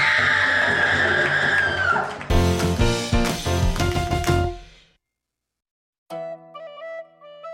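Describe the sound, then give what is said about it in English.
A person screams in pain for about two seconds, loud, before a burst of dense music-like sound takes over. After a short silence, a bright musical jingle begins. “Because our sound engineer can add that scream right here.”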